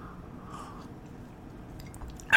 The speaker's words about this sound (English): I'm just taking a nice sip from my Maximal Coffee Coat mug.